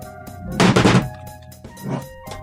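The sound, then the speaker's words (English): A loudspeaker gets knocked over with a loud, rattling thud lasting under half a second, followed by a softer bump, over a faint steady electrical hum with no one talking. “Knocked over my speaker.”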